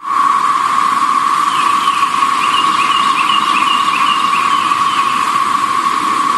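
A dense chorus of cicadas drones continuously, a steady high-pitched buzzing whine that holds at an even, loud level, with a faint wavering trill riding above it. No voices.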